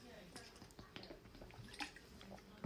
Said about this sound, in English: I'll just have some water. Excuse me for a sec.